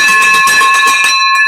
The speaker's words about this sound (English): All right, we're ringing the bell. Wait 1 second. Yeah. Wait 1 second. We're getting the victory bell going.